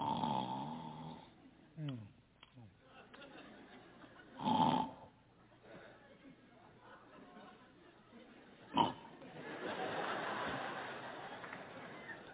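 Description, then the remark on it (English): A person imitates loud snoring, with rough, rattling snorts and breathy pulls repeated over several seconds, forceful, with a sharp burst partway through. “My wife snores so bad.”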